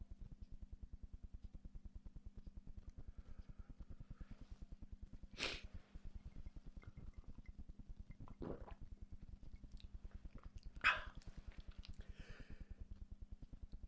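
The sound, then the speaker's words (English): A person sneezes once in a sharp burst, preceded by a couple of softer breathy huffs, all over a steady low electrical hum with no talking. “Oh, I sneeze.”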